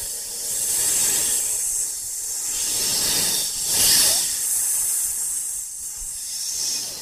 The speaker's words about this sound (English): What do you think that one is? It's a snake! Can you get your hands out slithering in front of you and do a hiss for me?